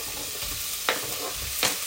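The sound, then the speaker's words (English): Chorizo sizzles steadily in a pan, a dense crackling hiss broken twice by short, bright scrapes as it is stirred. No one speaks. “Chorizo's going in.”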